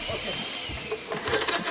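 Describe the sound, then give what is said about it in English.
A blender motor whirs briefly in short pulses, giving the food just a quick zap rather than a puree, a steady mechanical buzz that grows louder and choppier toward the end of the short burst. “All right, let's throw that in the blender here.”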